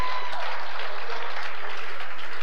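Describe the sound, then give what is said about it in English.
An audience breaks into steady, dense applause, many hands clapping together in a continuous loud wash with no voices standing out. “I think you should give John a better hand clap than that.”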